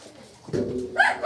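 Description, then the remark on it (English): A dog gives a couple of short, sharp barks, the second bark higher and brighter, with no one talking. “Ladies and gentlemen, the dogs are crazy.”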